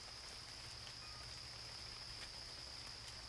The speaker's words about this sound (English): A little bit of drizzle falling. You might be able to hear it hitting the leaves above us.